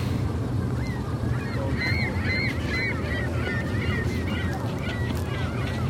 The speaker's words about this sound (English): Oh, the birds are getting noisier.